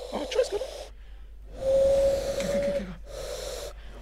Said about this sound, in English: I'm doing the one where you clasp your hands together and blow through your thumbs.